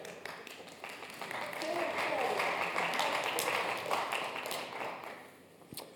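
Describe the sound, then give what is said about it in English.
A church audience breaks into steady applause for the church staff that swells and holds for several seconds, dense overlapping claps tapering slightly at the end. “We can clap.”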